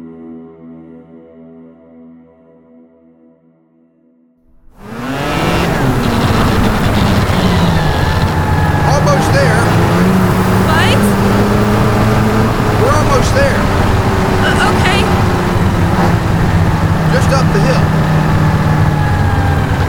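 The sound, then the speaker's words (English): After a few seconds of soft tonal sound, a combustion engine at a remote place in Alaska, 5 miles from town, abruptly roars to life and keeps running loud and steady, with a low droning hum and rougher mechanical noise on top. “The magic of a combustion engine, anyway.”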